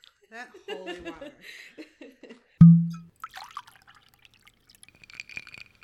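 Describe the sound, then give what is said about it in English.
Balcones rye whiskey being poured into a glass: a solid thunk as the glass or bottle is set down, then light, intermittent trickling and dripping, following a few seconds of chuckling voices. “But first, let's grab that holy water and let's drink the whiskey of the week.”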